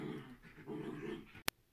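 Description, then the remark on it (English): An upset dog named Squirt growls in a low, rumbling, continuous snarl that wavers for over a second in the evening, then stops abruptly, followed by a single sharp click. “He's very, very upset about this today.”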